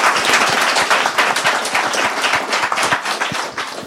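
A crowd claps steadily throughout, a dense, sustained patter of many hands at close range, loud and even with no voices breaking through.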